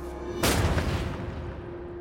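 A sudden volley of rifle warning fire, shot into the sky from a tank hatch during protests in Czechoslovakia, cracks out loudly, then fades into a rolling, rumbling echo over a steady low hum, with no voices.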